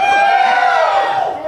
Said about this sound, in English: So now, which door do they choose, folks? Door one, door two, or door three? Let me hear cheers for number one.